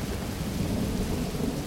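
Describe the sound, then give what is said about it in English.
A deep, sustained rumble of thunder rolls beneath steady, hissing rain during a storm with lightning strikes, loud and seemingly right overhead, with no sharp crack, just a continuous low roar for the whole moment and no voices. “Finally, the lightning strikes and thunderclaps feel like they're right on top of us.”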